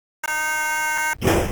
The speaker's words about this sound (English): There might be an emulator problem, obviously, but has anyone noticed that opening doors has the sound of a very angry alarm clock?